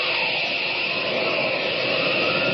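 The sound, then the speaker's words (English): A steady, loud rushing whoosh of wind as Superman flies faster than an airplane, red cloak streaming, back up the valley toward the flood of Harley Lake, holding an even roar for a few seconds with no voices. “Faster than an airplane, red cloak streaming in the wind, he rushes back up the valley to meet the boiling, roaring flood of Harley Lake, pouring down toward the narrow gorge of the Jefferson River.”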